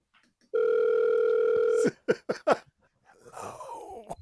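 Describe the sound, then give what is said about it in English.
Someone's phone rings with a steady electronic tone held for over a second, followed by several quick chirping bursts and a softer, muffled trailing sound. “Someone's phone ringing.”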